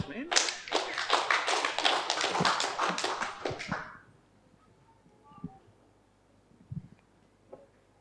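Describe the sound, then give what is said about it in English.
A loud burst of quick, dense clapping runs for about four seconds, then stops abruptly, leaving near quiet broken by a few faint knocks. “You clap too early.”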